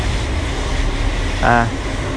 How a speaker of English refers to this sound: I should keep on talking as the trains towards Waterloo rumble on past.